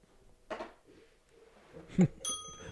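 A small bell rings once near the end, a bright tone that lingers and fades after a couple of soft knocks and rustles.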